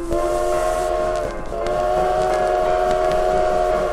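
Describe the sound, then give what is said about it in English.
A loud, sustained train whistle blows steadily over the rumble of a rolling train, dipping briefly before sounding again as the wheels clatter on underneath. “Aren't you a little bit young to be driving the train?”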